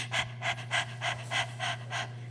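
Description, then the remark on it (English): A person imitates a nervous dog's panting, breathing in and out through the mouth in a rapid run of about seven short, breathy open-mouth huffs at a steady quick rhythm, fairly soft over a faint low hum. “Think of a dog. When they're panting, when they're nervous, or a cat, here we go, a cat too.”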